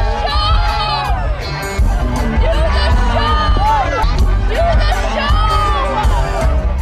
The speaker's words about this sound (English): What you'll hear is his band keep playing music and fans are yelling, do the show